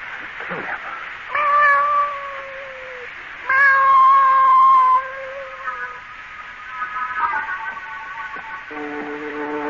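A cat being brought in yowls and meows in long, drawn-out cries, several loud wails in a row, with a couple of rising bursts standing out above the rest.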